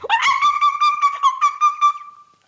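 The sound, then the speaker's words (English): A voice imitates monkey calls: a quick run of high, whooping hoots that pulse about eight times, then stretches into one long, wavering cry before fading out. No talking alongside. “I make monkey sounds.”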